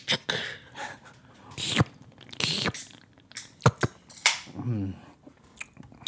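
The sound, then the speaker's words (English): A can of beer with 6.5% alcohol by volume being cracked open: sharp metallic clicks and snaps, then bursts of fizzing hiss, followed by a short low vocal murmur and a few more clicks. “All right, let's open her up and like? take a sip. Let's crack her open.”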